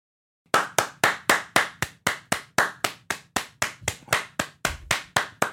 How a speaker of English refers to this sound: Sorry, someone asked that we bring it back. What, clapping at the start? Yeah.